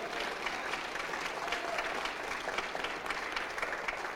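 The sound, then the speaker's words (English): A crowd claps steadily in praise of the Lord in a dense, sustained wave of applause, many hands striking at once with no individual claps standing out, filling the whole stretch at a moderate, even loudness. “Somebody give the Lord another big hand clap of praise.”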